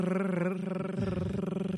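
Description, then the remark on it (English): A lawnmower engine drones steadily throughout, a loud, buzzing motor hum with a rapid pulsing rhythm and a slight shift in pitch partway through. “can you turn that lawnmower off?”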